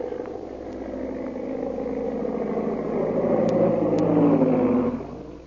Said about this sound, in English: Meanwhile, back at the plantation, a big black seaplane circles for a landing.